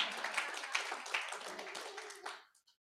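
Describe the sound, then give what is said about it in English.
A crowd breaks into applause, a dense patter of many hands clapping at a steady moderate level for a couple of seconds before quickly fading out. “Come on, that's worth a round of applause.”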